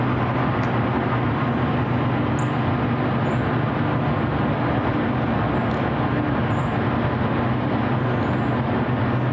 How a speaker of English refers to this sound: Hours a day, 7 days a week. That's what people are hearing that live near this cryptocurrency data center. And what do you know? It's operated by a San Francisco company called Prime Block.